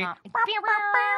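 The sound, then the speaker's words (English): Two human voices imitate a cat together, making two different noises that blend into a wavering, harmonized meow-like wail that rises and holds for about a second, fairly loud. “Oh, we went for two different noises. But they worked. And it was like harmonizing. Kind of sounded like a cat.”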